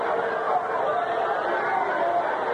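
A steady wash of crowd chatter from around 10,000 to 12,000 fans at a baseball stadium as Gaylord Perry prepares to pitch to Tony Taylor, many overlapping voices blending into a continuous, even murmur with no single words standing out and no breaks for the whole stretch.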